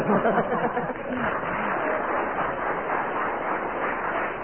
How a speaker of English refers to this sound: And a ripple of applause there, but only 1 mark.